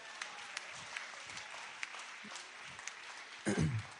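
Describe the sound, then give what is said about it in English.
An audience applauds steadily, a dense, crackling patter of many hands clapping at a moderate level, with a brief vocal shout or cheer rising near the end. “Oh, give them a round of applause.”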